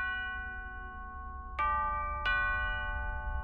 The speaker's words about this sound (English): Just then, the doorbell rang.